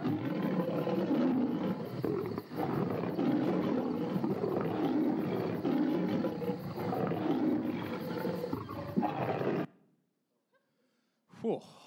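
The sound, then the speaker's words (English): Lions roar at night in loud, deep, rumbling bursts that overlap almost continuously for about ten seconds, then fall silent before one brief final growl. “I would have liked a bit more volume, but you could hear those roars at nighttime, right?”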